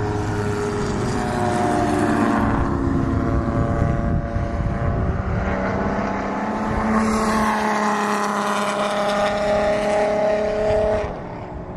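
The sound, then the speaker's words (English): A tow truck drives past on a race track, its engine a loud, steady droning hum whose pitch shifts as it passes, then fades slightly at the end. “Oh, here goes the tow truck.”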